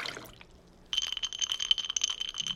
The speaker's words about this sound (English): glass, ice, pour.